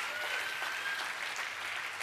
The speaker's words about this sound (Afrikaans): Kerkfamilie, kan ek vra met 'n hande klap? Kom ons verwelkom ook net ons aanlyn gehoor.